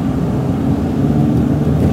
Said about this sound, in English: And then this is car interior.